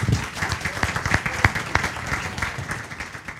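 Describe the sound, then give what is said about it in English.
An audience at an American Planning Association program on emotions and planning breaks into applause for the presenter, a dense, steady patter of many hands clapping at an even loudness that slowly fades toward the end. “Let's have a round of applause for Charlie.”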